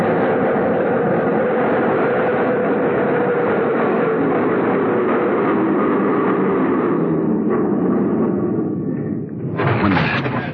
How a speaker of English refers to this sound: Train stopped, he went in through the center door.